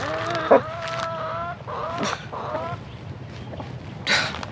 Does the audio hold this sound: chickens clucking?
yes